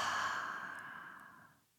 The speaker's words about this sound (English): So taking a deep breath in through your nose, pulling up all of that acknowledgement from 2023, exhaling it out.